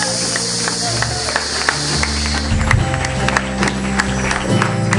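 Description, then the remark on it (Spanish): A church audience claps steadily to thank God, a dense, continuous wash of many hands, with sustained organ-like music tones and murmuring voices underneath. “If you thank the Lord, gracias, you can clap to him tonight.”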